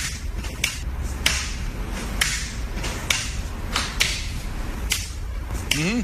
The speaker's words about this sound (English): Well, I mean, here are the sounds of one of the workers being beat by the belt. Whip.